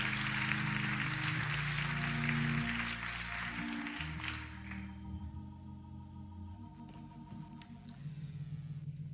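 A crowd applauds with a dense, steady clatter of clapping for about four seconds before it tapers off, leaving a low sustained hum and scattered faint sounds.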